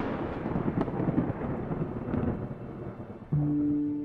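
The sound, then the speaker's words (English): A deep, rumbling thunder crash rolls on for several seconds, broad and loud, before a sudden sharp onset of a sustained tonal hum near the end. “The mighty Zeus, the god of thunder, he lorded it over all.”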